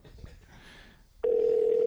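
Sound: telephone ringing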